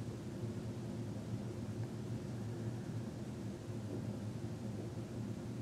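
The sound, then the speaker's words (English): Steady, even rainfall hisses over a deep, continuous rumble of rolling thunder, with no voices. The sound stays at a constant, moderately soft level throughout. “And continuing to hear that sound of rain in our imagination,”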